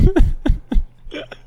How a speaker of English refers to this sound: Let me just get a burp out here.